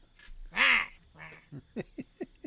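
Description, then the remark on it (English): A person imitates a goose, letting out one loud, nasal honk followed by a short series of quicker, clipped honking sounds. “Are you the goose of the room?”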